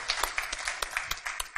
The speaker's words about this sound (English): No, that was fantastic. That was really impressive. Yeah, you can give a round of applause.